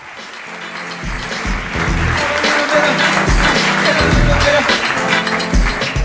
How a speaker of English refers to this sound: No, keep, please. Keep clapping, thanks.